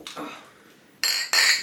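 Glasses clink together in a toast: a soft tap at first, then two bright, ringing clinks in quick succession, fairly loud, with no talking.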